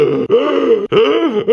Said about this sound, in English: He, most likely because of his intense singing style, will usually start a lot of lines off with him just gasping for air.